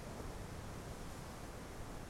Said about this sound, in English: You follow the sound of the ocean. It is louder now.